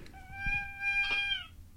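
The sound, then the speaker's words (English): A toy gives one long, creaky squeak like a door being opened, a steady high whine lasting over a second that dips slightly at the end, with faint low knocking underneath; the squeak happens when the toy is opened. “It's kind of awkward that it sounds like a squeaking door and the noise happens when you open the thing.”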